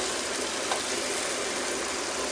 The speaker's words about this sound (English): So, and you can hear the sizzling, that it's even a bigger sound than it was with the chicken, because now you're sauteing dry pasta.